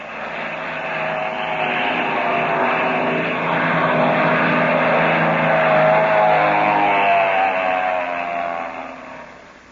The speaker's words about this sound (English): Just at the moment when things began to look brighter for Captain Midnight and his friends, a black plane dives out of the crimson sky.